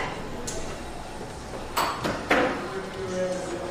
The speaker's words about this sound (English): A little knocking going on.